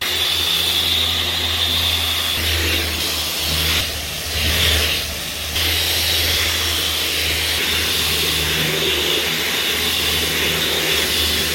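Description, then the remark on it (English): Wood being sanded with a coarse 61 sandpaper: a steady, gritty rasp over a low motor-like hum that runs throughout, easing briefly midway before resuming. No one speaks. “So I am realizing that it doesn't take off enough, therefore I will go for a harder paper and finish it off with a softer paper.”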